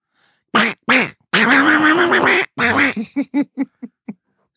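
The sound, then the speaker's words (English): A voice imitates the cartoon duck Donald with raspy, garbled quacking: a few long gravelly bursts, then a quick run of about seven short, fading quacks. “Nobody can hear what you're saying, Donald.”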